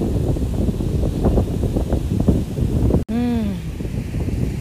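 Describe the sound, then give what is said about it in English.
Ocean waves make a steady, loud rushing roar mixed with wind buffeting the microphone; near the end a sharp click is followed by a brief, wavering tonal sound over the surf. “Listen to the waves.”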